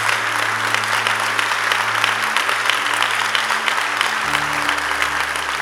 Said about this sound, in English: I want to give God a mighty clap offering. Give God a mighty clap offering.